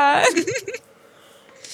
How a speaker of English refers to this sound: She's yawning.